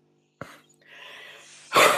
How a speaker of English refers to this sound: Oh God, I got a nasty cough.